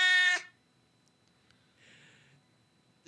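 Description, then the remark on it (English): A cat being held by its owner lets out one loud, short meow, followed by near silence with a faint, breathy rustle a moment later. No one speaks. “I'm going to hang on to my cat.”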